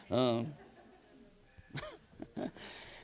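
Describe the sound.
A run of three or four sneezes: one loud, drawn-out voiced sneeze up front, then two or three shorter, quieter bursts in quick succession.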